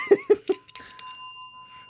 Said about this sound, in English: This is the boredom bell.